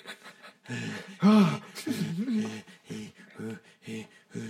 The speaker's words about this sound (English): Fucking heavy breathing.